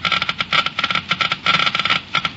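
Geiger counters click rapidly and irregularly, a dense crackle of sharp ticks that bunches into quick bursts and thins briefly between them, with no voices over it. The Geiger counters measure the engine wear rate with new RPM motor oil.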